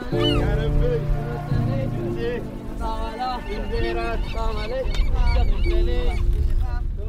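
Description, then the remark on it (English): A flock of seagulls calls repeatedly, overlapping squawks and cries filling the air above a steady low engine hum, as fishing skiffs cruise through Yemeni waters. “As fishing skiffs cruise through Yemeni waters, seagulls are not the only thing circling overhead.”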